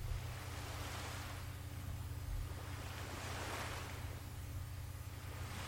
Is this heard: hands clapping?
no